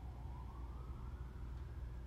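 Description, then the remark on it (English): An emergency vehicle siren wails faintly above the steady low rumble of city street traffic in San Francisco, its tone sliding slowly upward over the short stretch with no voices present. “I hear the sirens going off. San Francisco.”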